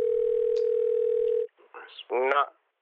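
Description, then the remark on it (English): A steady, unbroken landline dial tone hums loudly for about a second and a half as the landline is used to dial 911, then cuts off, followed by a brief burst of a voice answering. “I think I'm going to go ahead and grab the landline and dial 911.”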